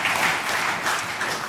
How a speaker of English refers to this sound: I think we should give him a round of applause for that.